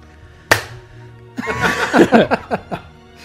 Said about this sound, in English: I'm gonna leave the clap in there, of course. Because it's an well, inside joke.